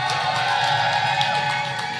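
A crowd cheers and whoops loudly for a poet about to read, in a dense, sustained roar, with high shouts and whistles poking through the wash of noise for the whole couple of seconds.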